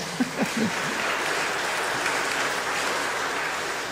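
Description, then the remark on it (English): A crowd claps steadily, a dense wash of many hands applauding together throughout, with a couple of brief voiced calls near the start. “Let's give a clap for that.”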